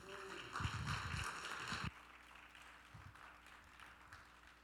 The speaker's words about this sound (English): So let's give him a round of applause as he comes up.